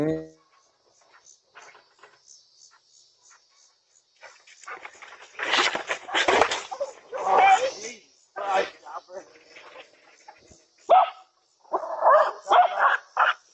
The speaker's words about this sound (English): And he's just sitting there holding his phone, looking at his phone, and those two dogs fucking jerk him right off that porch.